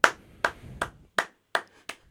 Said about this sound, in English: Applause.